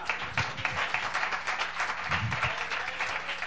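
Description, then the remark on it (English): An audience clapping hands together, a dense, steady wash of many overlapping claps at moderate loudness, sustained throughout without a clear single rhythm, with a few low murmurs underneath. “Now clap your hands to the Lord.”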